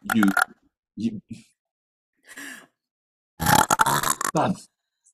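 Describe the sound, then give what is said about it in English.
A loud, drawn-out burp rumbles after a few short throaty grunts and a brief vocal sound, separated by moments of silence. “No, don't burp at me.”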